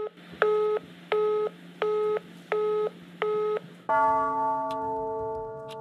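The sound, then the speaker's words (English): Five evenly spaced telephone dialing beeps, each a short dual-tone keypress, followed by a steady sustained line tone that holds to the end. No one speaks. “It starts with a phone call.”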